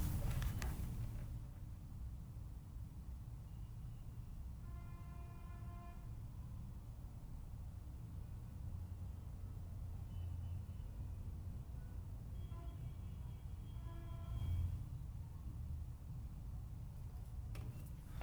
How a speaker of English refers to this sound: I don't know if that came out, but we'll see. If not, it's a lot of fucking honking. Take my word for it. And it's like that nonstop, 24/7.